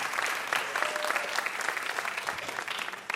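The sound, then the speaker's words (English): An audience applauds guest Mike Pesca steadily, a dense wash of clapping hands that stays fairly loud and even for a few seconds, with no voices breaking through. “Give him a huge round of applause for coming all the way down to join us.”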